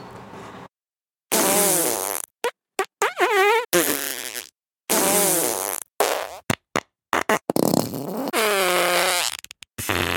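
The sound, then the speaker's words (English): Loud, wet fart sound effects from a novelty gadget that replaces spoken words with farts, set to its 100-beans level, burst out one after another in quick succession, some short and sputtering, others long and wavering, with brief silent gaps between them. “So the more beans you have, the more farts interrupt your words when you're talking.”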